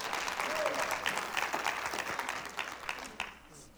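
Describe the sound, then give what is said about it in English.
An audience claps for God steadily for several seconds, a dense wash of many hands with sharp crisp transients, gradually thinning and fading toward the end. “Give God a hand clap.”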